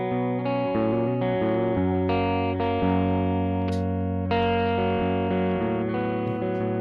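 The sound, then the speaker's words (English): A distorted electric guitar played through a fully analog pedal, straight with no reverb, plays sustained chords and shifting notes, loud, with a dry, slightly chorused tone, continuing steadily with no voices. “And as he's playing, I'll kind of go through and talk about the different sections of the pedal.”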